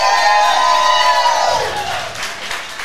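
A crowd cheers and whoops loudly in a sustained, high-pitched roar that fades into scattered clapping and murmuring after about a second and a half.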